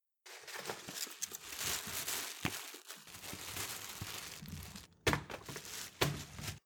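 Continuous crinkling and rustling of a plastic grocery shopping bag as a girl quickly rummages through it looking for chewing gum, with a few sharp thunks as items like bread, fruit and yogurt are pulled out and pushed aside.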